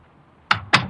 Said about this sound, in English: One day, I came home, I opened the door, and went in. Right away, I knew something was wrong.